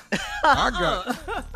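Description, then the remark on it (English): A voice produces an exaggerated, theatrical cough in people's direction: a few throaty, voiced bursts in quick succession, fairly loud, sounding more performed than natural. “I cough in their direction.”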